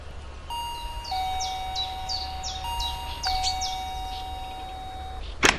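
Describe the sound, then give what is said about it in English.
An electronic doorbell, rung by a visitor at the door, chimes with sustained ringing tones layered under a quick run of bright, chirping notes, followed near the end by a brief sharp click. No one speaks. “Here, you ring the bell.”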